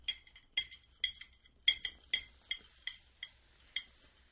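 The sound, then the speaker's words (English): A spoon stirs a scoop of powder into a drink with a small amount of water, clinking against the inside of the cup about a dozen times in a quick, steady rhythm, each tap bright and ringing. No voices. “Now I will stir it up.”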